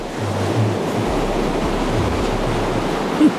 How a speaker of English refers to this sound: And then a wave it hit.